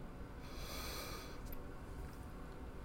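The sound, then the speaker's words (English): A single long, breathy yawn, drawn-out, with an airy rush that swells for about a second and then fades into quiet breathing. “Ooh, man, I am running on empty. I keep yawning.”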